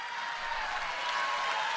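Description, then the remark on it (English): Rousing applause from a large audience at the CPAC conference after a political speech, a dense, steady wash of many hands clapping at once, sustained and fairly loud throughout with no voices breaking through. “To rousing applause.”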